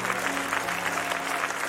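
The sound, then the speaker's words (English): A church audience claps their hands as a hand clap offering to God, sustained, dense applause, a steady wash of many overlapping claps at moderate loudness with no voices standing out. “Come on, let's give God another hand clap offering.”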